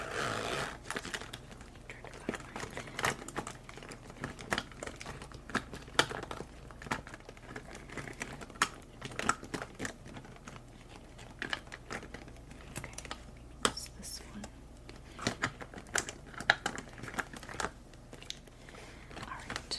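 Rapid, uneven clicking of keys on a computer keyboard, continuous for the whole stretch, with bursts of quicker taps and brief pauses over a low background hum.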